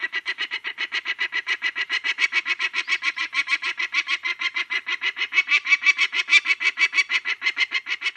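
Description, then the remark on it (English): A female peregrine falcon on her nest in a field squawks at a person hopping the gate: a rapid, unbroken series of harsh, scratchy cries, several per second, loud, with no voices. “You walk into the field, and if she's on the nest, like, I come in from that gate over there, and the minute you hop the gate, she'll start squawking at you.”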